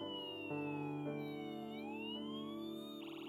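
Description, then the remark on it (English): An ambulance siren wails steadily outside, its tone sliding down and back up in a slow sweep, fairly loud and continuous with no one speaking over it. “There's your grace ambulance.”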